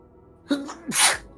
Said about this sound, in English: Sorry. Excuse me. She sneezes. It's the stress you see.